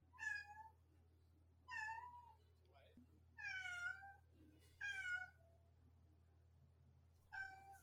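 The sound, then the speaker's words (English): A cat brought in to make cat noises for a recording meows five times in a fairly loud series, each call a drawn-out, wavering cry with short pauses between, over a steady low background hum. “got an actual cat to come make cat noises for our recording.”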